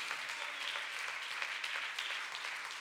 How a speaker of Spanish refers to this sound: Y el que lo crea, denle un fuerte aplauso al Rey con todo el corazón.